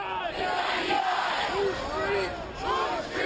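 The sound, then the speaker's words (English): A large crowd of Occupy protesters near Wall Street shouts and chants in unison against the country's gross inequality. It is a dense, continuous roar of many voices with rising and falling yells, sustained and loud throughout. “They wanted to wake the rest of us up, as through those financial canyons, they shouted their displeasure at the country's gross inequality.”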